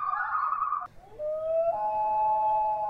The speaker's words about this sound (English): Favorite bird sound is the common loon, which I will insert a clip here.